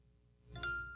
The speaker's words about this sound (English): And then when you hear that bing, that means it's now being powered on.